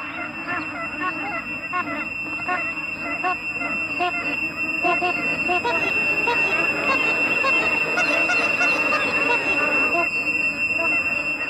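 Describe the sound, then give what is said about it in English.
A dense chorus of ducks quacking, many overlapping nasal calls chattering nonstop at a steady, fairly loud level, with a thin high tone holding underneath throughout. “And when we come back after you hear this interlude of beautiful duck sounds, we're going to announce our winners and then we're going to wrap it up.”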